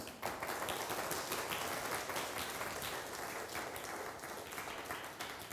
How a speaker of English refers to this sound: And can we get a quick round of applause for the worship team?